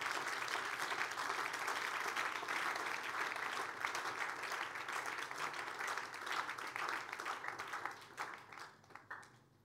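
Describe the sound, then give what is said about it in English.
An audience claps steadily in dense, overlapping applause, sustained at fairly loud volume for most of the stretch before thinning out into scattered final claps near the end. “You should be clapping better than you are doing.”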